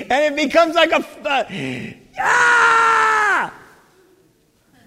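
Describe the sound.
A man talks briefly, then lets out one loud, drawn-out, strained shout lasting over a second, a vocal imitation of angry yelling, before the sound cuts off into near silence.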